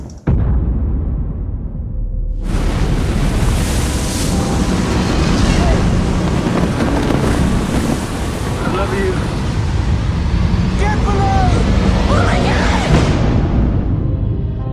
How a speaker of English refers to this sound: And then they hit a mother of a storm, a Category 5 hurricane. Hurricane Raymond has taken an unexpected turn and has been upgraded to a Category 5.